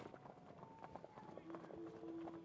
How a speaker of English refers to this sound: Every lamp shatters along with the window as it leaps inside, leaving us in darkness, with only the skittering clop, clip, clop crash of its hooves and claws. It has claws as well, somehow. On the hardwood floor, as it moves past us